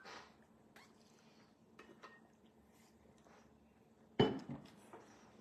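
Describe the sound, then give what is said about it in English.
Someone takes a quiet drink of water: soft handling and faint sipping over low background hiss, then a sharp clink as the glass is set down, followed by a couple of lighter knocks. “Let me take a swig of water here.”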